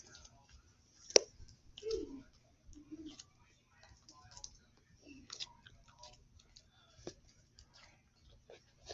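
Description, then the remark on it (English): Crunchy, fluffy slime, an older one, being squished, with soft sticky crackles and a few sharper clicking pops scattered irregularly. It's fairly quiet, and nobody talks. “It's a bit crunchy, actually, but it's mainly just fluffy. It's only crunchy sometimes, because this is sort of an older one.”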